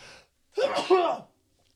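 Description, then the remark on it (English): A single forceful sneeze with a sharp breathy burst that lasts under a second, followed by quiet; a brief faint noise comes just before it. “I'm going to sneeze so hard.”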